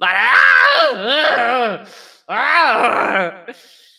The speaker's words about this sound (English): He's basically screaming and throwing a fit. No! Damn it, no! Transform! He's obviously also in pain because he's on fire. He feels like he's on fire. So it's a lot of screaming.